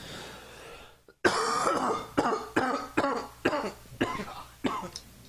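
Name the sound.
coughing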